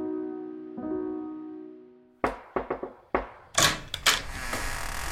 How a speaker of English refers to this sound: It was at this moment that there was a knock at the door.